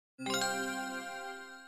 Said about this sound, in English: If you hear that chime, that means it's time for some listener mail.